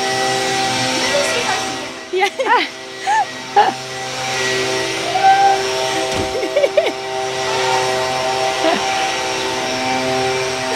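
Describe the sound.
A steady, buzzing engine drone of lawnmowers running outdoors holds an even pitch throughout, while people talk in short bursts over the continuous mechanical hum.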